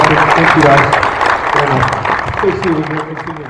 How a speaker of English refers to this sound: All right, big round of applause. Thank you, guys.